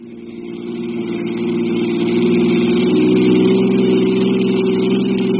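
A car engine hums steadily and builds in pitch and loudness as the vehicle accelerates, a continuous revving drone with no voices; the car carries three people in the front and heads straight for police headquarters without stopping for red lights.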